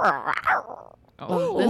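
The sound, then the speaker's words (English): A person practising a roar imitates a growling roar with their voice, two loud, rough, wavering bursts separated by a short pause, the second sliding up and down in pitch. “That was, someone's working on their roar.”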